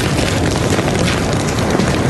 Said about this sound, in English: What an ominous sound. Listen. It sounds like a jet airplane up there, but that is fire being pushed by the wind.